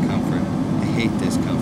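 Steady, loud airplane cabin drone in flight at 36,000 feet, a continuous low roar with no breaks across the short stretch, and faint voice-like murmurs sitting just above it.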